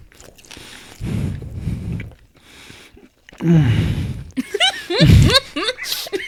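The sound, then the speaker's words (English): Heavy, audible breathing into the mic while someone eats mild Buffalo Wild Wings hot wings from Dover, with sharp gasps and puffs mixed with wet chewing and biting sounds in uneven bursts. “Breathing pretty hard, bro.”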